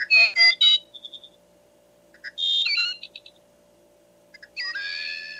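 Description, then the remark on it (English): Recorded American bird calls, including a robin, play from a small electronic speaker in a mug, set off by a switch and button, in three bursts of bright, whistly chirps and trills, with short pauses between them over a faint steady electronic hum. “And if I want to, I can press the button multiple times, and there are 8 American bird sounds or songs that you can listen to.”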